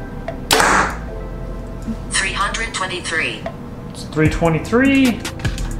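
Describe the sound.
A Behr Divergent compound bow, set at 29 and 70 pounds, fires a 350-grain IBO-weighted arrow during a speed test, a loud, sharp snap and thwack as the arrow strikes the target. Voices then talk quietly over a low background hum.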